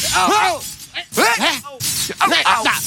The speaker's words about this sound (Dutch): Ik hoor ze, maar ik zie ze. Ik hoor ze wel, maar waar zijn mijn sleutels nou? Waar zijn mijn sleutels?